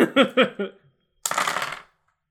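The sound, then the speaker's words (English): A few short voiced syllables come first, then after a brief pause a handful of dice for an attack roll in a tabletop game clatter loudly onto a hard surface, rattling for about half a second before stopping. “The amount of dice you drop for that attack now is ridiculous.”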